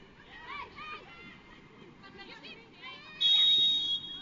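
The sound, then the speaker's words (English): A single sharp, loud referee's whistle blast at a BYU Cougars soccer match, called for a tug foul in the Cougars' attacking half and awarding a free kick, cuts in near the end, lasting under a second, over a steady murmur of crowd noise and voices. “Got a whistle in the current Cougars attacking half and a tug there on the alum.”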